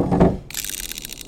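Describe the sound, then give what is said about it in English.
A short metallic clack opens, followed by a quick run of rapid mechanical clicks like a ratcheting mechanism as a service pistol is unlocked and readied, crisp and fairly loud with no voices. “I'll unlock my service pistol.”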